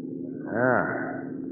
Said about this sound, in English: I think I hear a motor mine, Capitan.